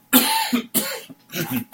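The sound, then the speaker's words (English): A person clears their throat with three rough, harsh bursts in quick succession, the last one drawn out slightly longer, with no talking. “Excuse me, I've got to clear my throat.”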